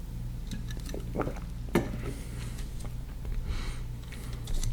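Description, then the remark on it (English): Someone sips a drink: a sharp clink of a glass, then soft wet slurping and swallowing sounds over a steady low hum, with no talking. “Now, I'm going to take a sip of my drink on that one.”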